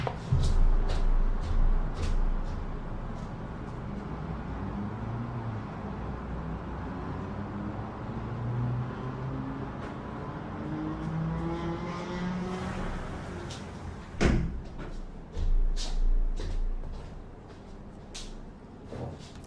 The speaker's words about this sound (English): The level of disrespect for your fellow men it takes to do that at 9 p.m. to just sit there revving your engines at an intersection, right?